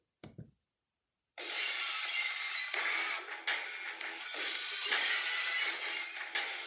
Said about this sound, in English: If you want to see a crowd pop, you break that glass and out comes Stone Cold in his cut off jeans and his leather vest and his bald head and walking with two bad knees.